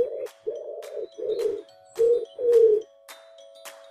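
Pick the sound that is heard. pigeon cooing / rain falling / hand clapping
pigeon cooing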